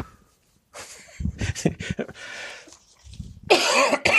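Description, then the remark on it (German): Harsh coughing on request: a cluster of short rough bursts, a breathy pause, then one louder, raspy cough to finish. No one speaks. “Kannst du noch mal kurz husten?”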